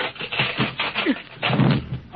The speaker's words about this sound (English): Tin Man, your axe, chop down the door. But that'll make a noise in the guards.